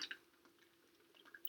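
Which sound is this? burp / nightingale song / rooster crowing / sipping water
sipping water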